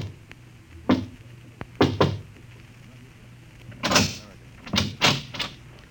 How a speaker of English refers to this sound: Somewhere in Europe, a man is walking through the darkness down a cobblestone street. It's early evening still, only a little past eight. But the street is strangely deserted. He pauses, looks behind him, then knocks quietly on a door.